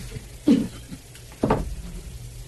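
Two short, scratchy strokes of a Sharpie marker as a bottle is signed on the air, separated by about a second of near silence, with a faint low hum underneath.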